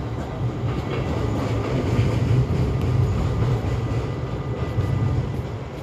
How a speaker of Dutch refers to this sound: En ik zie nu de sprinter, die komt vanuit Horen volgens mij. Gaat richting Alkmaar Centraal vanaf Alkmaar Noord.